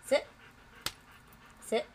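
A dog breathes heavily in two loud, throaty huffs about a second and a half apart, with a brief sharp click between them and a faint low rumble underneath.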